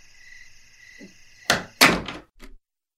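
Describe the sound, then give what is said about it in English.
A door into a house opens with a sharp latch click, followed by a heavier thunk and a final short knock, while steady cricket-like insect chirping hums in the background. “And he heads over to the door into the house.”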